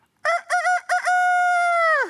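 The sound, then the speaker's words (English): A rooster crows once from within the Kidron Valley, a loud harmonic call that starts in choppy bursts and then stretches into a long, steady held note before dropping off at the end. “And I just reflected in that moment as we're hearing the very story of the rooster reminding Peter of his failure.”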